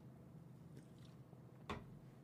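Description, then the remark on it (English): A single quick sip from a drink cuts through an otherwise quiet stretch with a faint low hum in the background. There is no talking. “Sorry, let me have a sip of my drink here.”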